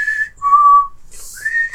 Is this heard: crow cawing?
no